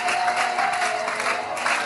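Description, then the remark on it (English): A church audience claps hands in praise of God in steady, dense applause, a continuous wash of many palms sounding loud throughout, with a faint sustained tone underneath. “Somebody go ahead and clap your hands and praise Him.”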